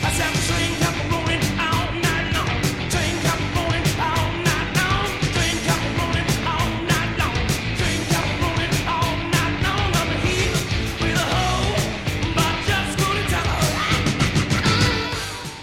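A loud rock recording built on a driving, repeating guitar riff, with steady pounding drums and crashing cymbals keeping a fast beat throughout, at constant volume with no talking.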